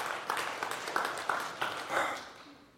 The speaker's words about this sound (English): That's great news! And that's worthy of applause.